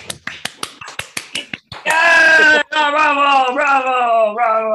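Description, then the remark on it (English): About ten quick, sharp snaps come first, then a voice breaks into loud, drawn-out mock screaming and jeering in imitation of State of the Union heckling, carrying through to the end with a brief pause partway. “Yeah, just like scream and act like idiots when we don't like something.”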